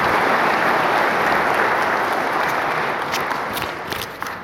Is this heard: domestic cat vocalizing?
no